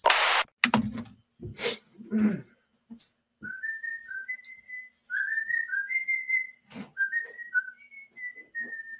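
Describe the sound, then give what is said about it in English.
A person whistles the Gamera monster movie theme tune, a clear melody of short rising and held notes, preceded by a few sharp clattering bursts at the start. “I'm going to include his whistling the Gamera theme in the episode somewhere, but don't tell him.”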